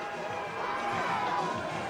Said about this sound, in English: Let's see if you can hear the Dodger fans.